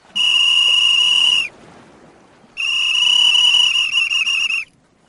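Two long, loud whistle blasts at a steady high pitch, the second held longer than the first, with a short quiet gap between them and no talking.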